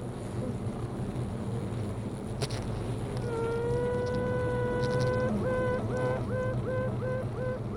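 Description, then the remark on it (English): A queen honey bee piping: one long, steady high-pitched note, then a run of short, evenly spaced toots, all over the continuous low drone of a buzzing hive. “So as soon as this first queen bee had started piping, another two started to pipe.”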